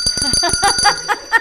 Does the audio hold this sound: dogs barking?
no